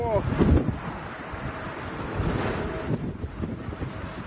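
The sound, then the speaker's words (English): Strong storm-force wind roars and buffets against the microphone in a continuous, loud rush as a Lufthansa jet attempts to land at Hamburg with its wheels down, gusts swelling and easing throughout and a brief rough burst near the start. “As he struggles to maintain his line, the wheels are down, but the storm is up. And this is the frightening effect.”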